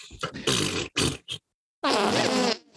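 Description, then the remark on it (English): Loud fart noises: a quick run of three sputtering blasts, a brief silence, then one long, buzzing, drawn-out rip that trails off. No one talks. “You're supposed to fart.”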